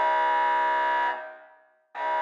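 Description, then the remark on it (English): A loud, harsh hover train alarm blares in a steady, buzzy tone as the malfunctioning train careens off course. It cuts off and fades for a moment, then kicks back in just as loudly. No one speaks. “The train's alarms continued to wail as it slowly corrected itself back onto its course.”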